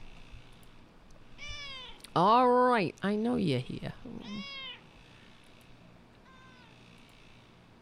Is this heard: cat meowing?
yes